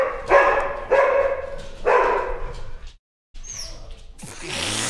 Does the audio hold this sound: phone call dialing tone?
no